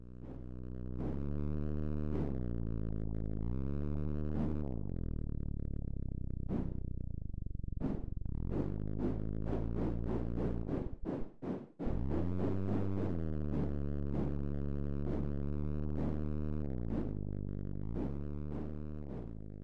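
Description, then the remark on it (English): A loud synthesized sonification of car and truck supplies over time: a steady, buzzy truck-engine drone shifts up and down in pitch, overlaid with quick whooshes of cars leaving the lot that cluster mid-clip, briefly cutting out before the drone resumes. No talking. “I was thinking about cars kind of whooshing off the lot in regards to sales. For the truck sound, I was thinking more of a truck engine.”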